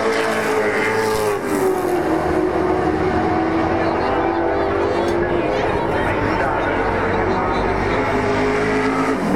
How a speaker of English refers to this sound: The crowd goes wild as the HQ350 Chev lazy gear changer goes by. And it's going hard too.